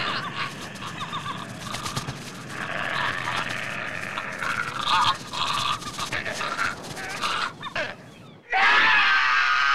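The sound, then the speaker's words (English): A man, the killer in a film, screams in bloody anguish after a hard cut, a loud, ragged, drawn-out cry that wavers for several seconds, breaks off briefly, then surges back even louder and harsher near the end. “And it's going to an apex, and so you're expecting somebody to scream, victim or finder, and instead it hard cuts to our killer screaming in bloody anguish.”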